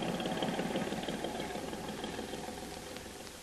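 A big boat's engine rumbles steadily as it heads out to sea, a continuous low, throbbing drone that fades slightly over a few seconds as it moves away. No one speaks.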